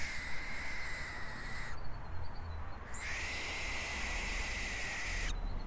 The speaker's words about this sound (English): Again, apologies, but that was a barn owl. You can just kind of picture how scary the situation would be even with something as tame as an owl.